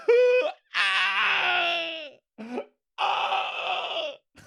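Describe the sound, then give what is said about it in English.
Keening, a loud, high-pitched mourning wail: a crying voice rising and breaking in four bursts, two long drawn-out cries separated by a short sob, with no talking. “Keening is when you kind of wail and, you know, scream and kind of mourn someone at a wedding, at a funeral.”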